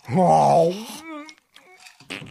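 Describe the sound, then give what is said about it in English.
A loud, buzzy fart sound effect lasting about a second, its pitch wavering, followed by a few short, quieter voiced murmurs. “There's a good sound effect too. Hey, heavy-duty... Speaking of fart sounds”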